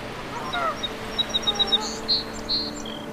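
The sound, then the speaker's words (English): Insects buzz around a wetland pond in a steady low drone, with a quick run of short, high chirps and a few brief whistling calls over the top. “Wetlands, there were probably ducks, and then all the insects and everything else that's associated with a pond.”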